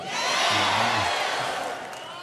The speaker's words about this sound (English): Sundar Pichai, Alphabet CEO, on stage. Getting some applause from the employees.